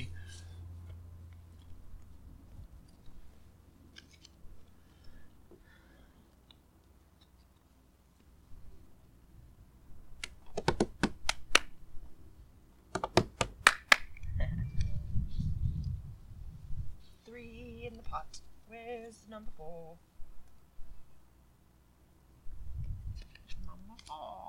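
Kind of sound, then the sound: household object, shuffling playing cards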